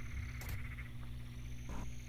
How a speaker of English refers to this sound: A very large rustle, as well as a ribbit. There's a frog back there, guys.